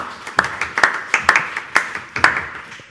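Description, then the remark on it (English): Thin, scattered audience applause: a small number of sharp hand claps at an irregular, uneven pace, sounding sparse and half-hearted rather than a full ovation, with no voices over it. “It's terrible when you have to force people to clap, isn't it?”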